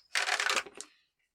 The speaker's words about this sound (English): Just showing my poor dice rolls.